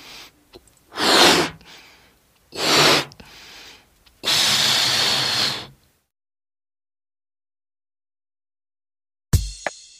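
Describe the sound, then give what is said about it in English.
Someone blows up a balloon in three loud, breathy puffs, the third long and steady, followed by silence and a brief crackly noise at the very end. “I am blowing up the balloon.”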